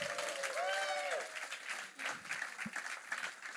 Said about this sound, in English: All right, stand up, guys. Let's give them another clap. Let's thank the two.